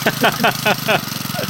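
A small generator engine sputters through several rhythmic chugs as it starts, then settles into a fast, steady idle putter, moderately loud.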